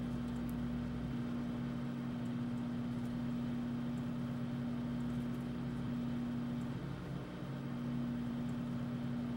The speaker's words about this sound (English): Oh yeah, now we have to wait for the microwave to finish.